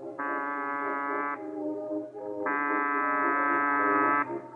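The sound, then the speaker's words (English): A doorbell at the side door of a boarded-up Museum of Murder in a ramshackle amusement area buzzes twice, each ring a steady, harsh, reedy tone lasting over a second, separated by a short pause, with a low hum underneath and no voices. “There's a bell here, this side door.”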